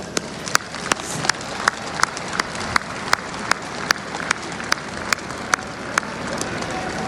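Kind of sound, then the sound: crowd, crowd applause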